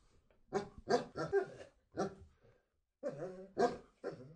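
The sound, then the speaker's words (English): A dog, prompted to say hello, 'sings' in a string of drawn-out, tuneful growls and whimpers, several bursts in a row, a brief pause, then a few more, with no one talking. “That dog will sing for a piece of a biscuit, I swear to God.”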